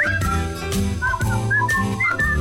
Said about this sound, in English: What a time to discover you can't whistle anymore. A bit embarrassing. Live on your own breakfast show.